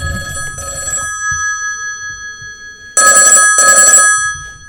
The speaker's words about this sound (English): What the... Why would anyone... Who even rings people on the phone anymore?